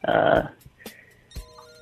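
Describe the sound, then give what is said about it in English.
A telephone rings in one loud, brief burst, followed by quieter clicks and a steady electronic tone near the end, with no one speaking. “I guess we'll take our first caller here.”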